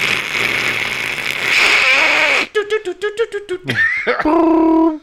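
A voice imitates an AOL dial-up modem connecting: a loud, steady hissing static, then a quick string of about six pulsed beeping tones, ending in high warbling, whistle-like screeches.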